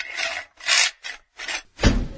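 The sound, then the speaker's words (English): A heavy vault door, the Sean Teschner Show Ear Candy Vault, creaks open in five rasping, grinding pulls separated by short pauses, the last one deeper and louder than the rest. No voices. “We're going to open this vault door here and see what kind of archives we could dig out from the Sean Teschner Show Ear Candy Vault.”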